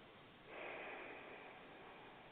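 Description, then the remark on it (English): A single steady inhale drawn in through the nose during a meditation breathing exercise, soft, a hissy airy sound lasting about two seconds with no talking. “So it's simply breathing in through your nose and breathing out through your mouth.”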